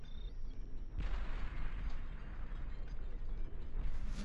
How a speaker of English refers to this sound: Oh dear, lots of other explosions. Lots of other stuff happening. And Eddie exploded! Oh no, Eddie!